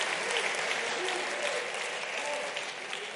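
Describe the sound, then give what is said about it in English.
An audience applauds the choir and musicians steadily, a dense wash of many hands clapping at an even, fairly loud level throughout, with no gaps and no voices standing out. “Let's give our choir a hand clap and musicians.”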